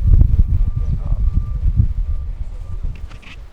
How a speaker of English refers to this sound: I think I'm going to end the episode. I'm going to end it early because it's starting to get really windy again. Well, I mean, it was windy. But it's windy and it's messing with my audio levels.